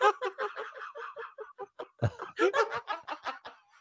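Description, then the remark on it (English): A voice imitates a duck, letting out a rapid, steady string of nasal quacks, fairly loud, about twenty in under four seconds with no words spoken. “I can't quack myself.”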